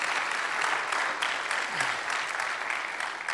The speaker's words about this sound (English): I am way, way better for being married to her than being married to myself. Come on, you can applaud that.